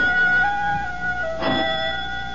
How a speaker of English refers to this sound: Only the doorbell. But no one comes here unless her father is present, and seldom then. Would Papa want her to answer? Catherine thinks not, is certain not. The ringing persists.